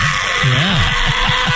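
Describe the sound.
A person imitates the hellcat-like scream of a hissing nocturnal animal with teeth and pouches that gets into garbage: a low, warbling vocal cry that rises and falls, then trails off into a few short pulsing grunts, fairly loud.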